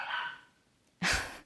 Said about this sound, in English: My dog barking in the background is ruining the mood of this podcast.